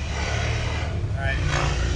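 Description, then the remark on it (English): A motorcycle engine rides by with a steady, loud, low rumbling drone that holds throughout, its pitch shifting slightly upward partway through. “All right, pause for reality motorcycle riding by.”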